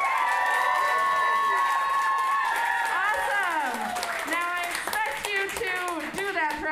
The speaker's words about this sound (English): I want to hear the energy in this room go up like 10 degrees. So on the count of three, can we give a big round of applause just for being here to get the energy up? Are we ready? 1, 2, 3.